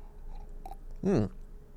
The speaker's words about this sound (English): Time for a sip. While we drink, we hydrate.